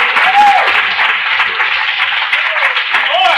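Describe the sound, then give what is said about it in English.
An audience claps steadily and loudly throughout in praise of the Lord, dense continuous applause with voices calling out and cheering mixed in. “Oh, come on, clap your hands and praise the Lord.”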